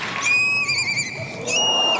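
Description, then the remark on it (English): An 11-year-old girl's voice imitates a horse's whinny on America's Got Talent: one loud, high-pitched call that quavers and trills for about two seconds, with no other talking. “Horse.”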